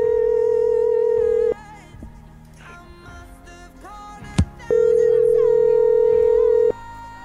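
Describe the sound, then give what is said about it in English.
A steady electronic telephone ringback tone sounds while a cell phone is called, lasting about a second and a half, pausing, then returning for another long stretch, with quiet background noise and a sharp click in between. “I'll try his cell phone.”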